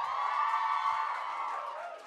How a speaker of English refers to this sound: Keep the applause going. It takes a little while to get here.